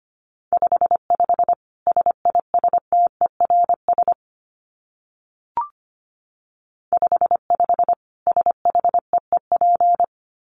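Fast Morse code at 25 words per minute: a steady mid-pitched tone keyed in quick dots and dashes, in two runs split by a pause with a brief click between them.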